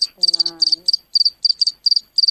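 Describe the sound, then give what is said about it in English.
A cricket-like insect chirps in steady, rapid bursts of high, shrill pulses, about nine groups in a row, with a brief low voiced hum under the first few. “There's a bug in my nose!”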